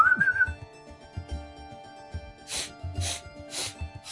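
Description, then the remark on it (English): A short, wavering human whistle sounds near the start, about half a second long, then fades; a few soft breathy bursts follow, with no talking. “I whistle.”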